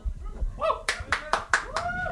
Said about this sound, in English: No, you don't have to applaud. Thanks.